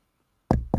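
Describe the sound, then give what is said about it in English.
Two quick knocks on a forehead land in rapid succession after a moment of silence, each a dull, fairly loud thud with no voices present. “That's me knocking on your forehead.”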